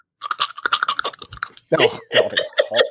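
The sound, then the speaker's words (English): A person makes a quick, irregular string of wet tongue clicks, then shifts into strained voiced mouth noises, a deliberate vocal impression of Cliff's weird tongue-clicking habit. “Do I have to make that weird tongue clicking yes.”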